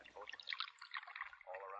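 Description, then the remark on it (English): Coffee pours into a cup in a hotel, a steady bubbling trickle for under two seconds, its gurgle rising into a higher ringing tone as the cup fills. “I'm going to pour for you, sí?”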